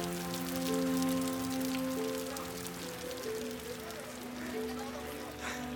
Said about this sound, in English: And it's pouring.